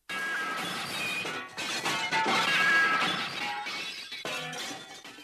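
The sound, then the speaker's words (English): A loud crash of a glass partition shattering as someone walks into it, followed by several seconds of shards tinkling and clattering as the pieces fall and settle, with no voices. “glass partition.”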